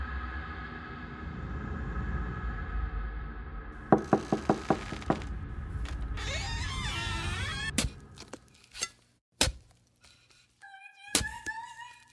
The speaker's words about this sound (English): Today, her spirit lingers and knocks on the door of those that know of her death. I tell you this story because I cannot avoid the knocking anymore.